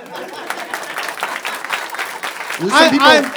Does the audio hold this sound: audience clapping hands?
yes